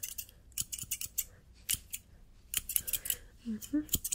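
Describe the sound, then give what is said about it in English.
Crisp scissor snips cutting hair bangs straight across in a barber-shop haircut roleplay, a quick irregular series of sharp metallic clicks with bright high-end crunch, fairly soft overall, with a faint murmur of voice near the end. “ASMR FOR MEN! Psycho Barber Shop 💈 Beard Shave, Haircut, & Side Buzz”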